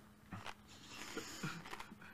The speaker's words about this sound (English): It's so thick, I can't chew it. Oh, it's all over my lips. I'm so glad I didn't touch it. Oh. Oh, I can't swallow it.